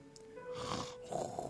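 A person snores while asleep, two rough, breathy snores in quick succession, moderately loud, with no talking.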